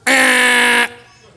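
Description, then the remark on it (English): A voice imitates a quiz buzzer being hit during a Bible quiz, with one loud, flat, nasal blare lasting just under a second. It cuts off abruptly and leaves faint quiet behind. “She hits the buzzer.”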